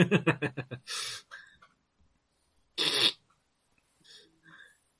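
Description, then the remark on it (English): A rapid string of short, rhythmic nasal sniffs, followed by two longer, loud, hissing sniffs separated by quiet gaps, then a couple of faint breathy snuffles; no talking. “Oh, well, I shall sniff at you for a little while until it gets unbearable, and then I'll actually go and find something.”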